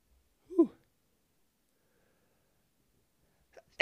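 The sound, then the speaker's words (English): One sharp, fairly loud sneeze bursts out near the start, followed by a few seconds of quiet before a voice begins talking at the very end. “Sorry about that. Had to sneeze.”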